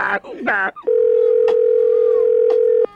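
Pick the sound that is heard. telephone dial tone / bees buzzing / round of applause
telephone dial tone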